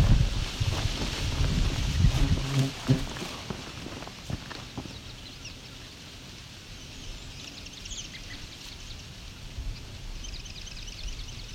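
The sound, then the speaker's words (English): Footsteps crunch along a trail past a trembling aspen, steady at first, then fading after a few seconds into a constant rustle of the aspen's leaves in little wind, with faint bird chirps high in the background. “Just walking past the trembling aspen here.”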